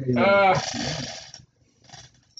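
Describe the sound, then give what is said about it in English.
A dog breathes heavily into the microphone, starting with a short voiced, whiny snort that turns into a long, raspy exhale, followed after a pause by a second, quieter breath. “You know, it's breathing on there for you guys, so you can hear the doggies.”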